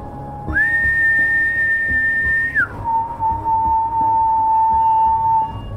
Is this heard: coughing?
no